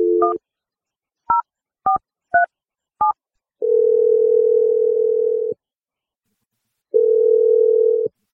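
A brief tone, then five quick touch-tone dialing beeps, followed by two long, steady telephone ringing tones separated by a pause. No voices are heard.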